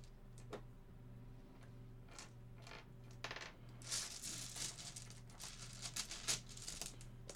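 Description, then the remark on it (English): Dice rattle and clatter across a hard tabletop, a few scattered clicks building into a busy burst of tumbling taps, quiet, over a low steady hum with no talking. “Dice. There we go.”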